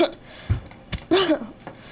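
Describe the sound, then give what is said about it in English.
Someone coughs a few times in quick succession: short, harsh bursts followed by a longer, throatier cough with a voiced rasp, fairly loud against a quiet background. “Could you stop coughing?”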